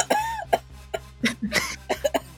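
A rapid series of about eight short, harsh coughs, fairly loud, coming in quick uneven bursts with a faint steady hum underneath.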